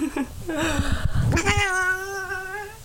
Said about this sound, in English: That lovely sound you just heard was my cat crawling onto the microphone as I try and record this intro.